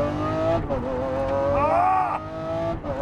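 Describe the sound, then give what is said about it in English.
The engine of a 2020 Lamborghini SVJ sports car roars steadily as it is driven, its pitch rising and falling with throttle changes and a brief high whine, loud and continuous throughout. “I am driving a 2020 Lamborghini SVJ.”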